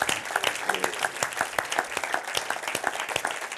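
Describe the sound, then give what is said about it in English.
Steady applause from an audience for the school teachers who have stood up, many hands clapping in a dense, crackling wash that holds at an even level for several seconds with no voices standing out. “Let's applaud them.”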